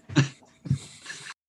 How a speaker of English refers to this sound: That was just coughing some of the sticky icky. I got a little blue jazz situation happening right now.